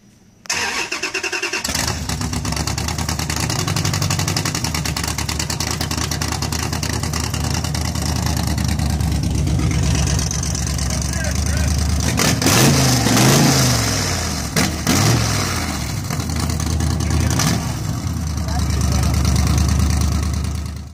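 A car with a 392 Hemi engine, side pipes and electronic exhaust cutouts cranks and fires up, then settles into a deep, loud rumbling idle with a few throaty revs through the exhaust, continuing steadily to the end.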